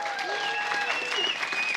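An audience gives a round of applause welcoming a guest speaker, a dense, steady wash of many hands clapping at an even loudness throughout, with no clear individual claps standing out.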